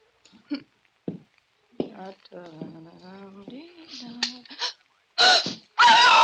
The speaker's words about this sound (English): Why did you scream? Well, who wouldn't? The room was a shambles. Someone had searched it.